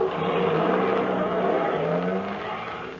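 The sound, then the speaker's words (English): A truck loaded with a crate revs its engine loudly and drones steadily as it pulls off, the rumbling sound easing slightly toward the end, with no voices present. “No, they've already loaded it onto the truck.”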